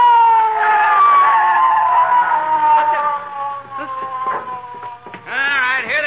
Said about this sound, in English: McGee, I hear a siren. Oh, so do I. It's the police